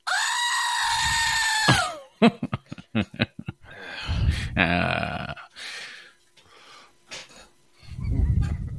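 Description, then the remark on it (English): A played sound clip of a goat: a loud, drawn-out scream, followed by a burst of rapid clicks and several more bleating, yelling cries, with no talking. “Let me check the weather goat.”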